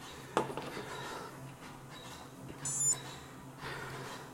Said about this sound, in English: That's just my Garmin beeping at me. Wanting to know about satellites.